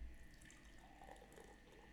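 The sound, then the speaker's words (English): Beer pours steadily into a glass during a beer tasting, a continuous splashing gurgle with a faint fizzy hiss, lasting a couple of seconds with no one talking. “You pour the beer in there.”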